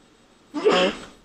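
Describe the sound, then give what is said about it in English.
A single sneeze bursts out after a moment of near silence, a short voiced intake followed by a loud, breathy, noisy blast that fades quickly. No talking around it. “Oh, no. I'm going to sneeze.”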